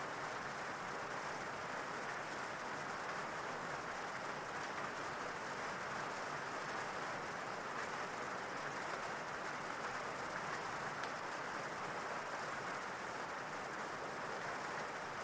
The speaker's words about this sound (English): Imagine that rain washing away any negativity of the day as you relax more and more.